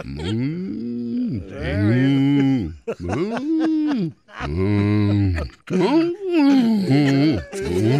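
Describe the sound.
A man's voice imitates a cow, letting out several long, drawn-out, loud moos in a row, each swelling and fading with brief pauses between them.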